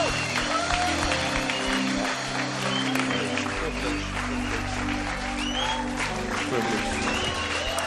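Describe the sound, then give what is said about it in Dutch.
An audience stands and applauds steadily for several seconds for Pastor Mike Pilavachi, a dense, continuous wash of clapping over sustained low musical tones and a faint murmur of voices. “So why don't we stand up for and put our hands together for Pastor Mike.”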